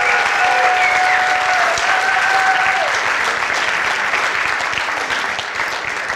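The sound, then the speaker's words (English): A large church audience claps steadily after a service honoring students, a loud sustained wash of applause, with a few faint cheers or whistles rising over it early on before it gradually thins slightly. “Well, let's give everybody one more real big round of applause.”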